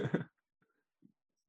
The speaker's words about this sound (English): Was that cough COVID or was that weed? Weed by the sound of the lighter. Yeah, that was weed.